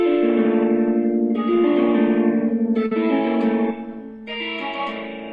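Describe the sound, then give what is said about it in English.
A mildly overdriven electric guitar, kept to little distortion, strums sustained chords in a close voicing, several ringing changes over a few seconds, fairly loud, with a slight reverb tail and no voices. “I don't want too much distortion for that chord.”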